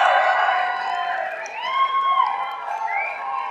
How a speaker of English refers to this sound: And so we're just gonna go 3, 2, 1, and then we're just gonna cheer our loudest cheer. I'll give you an example of what a loudest cheer isn't. Good effort. So we're going to go for it. You ready? 3, 2, 1, go. Come on.